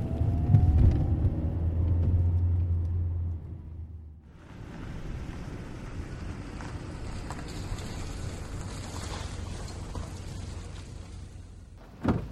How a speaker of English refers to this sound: I spun the car around and headed back home.